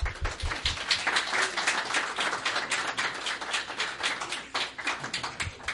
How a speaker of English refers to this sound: So we can go ahead and give the gifts, and this is from the church, and so as a church, we're really, really happy that this family is being dedicated to God today. So let's all clap for them.